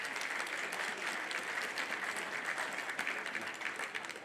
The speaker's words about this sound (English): But again, this is a very good, well-rounded panel, and let's give them a round of applause and thank them for being here.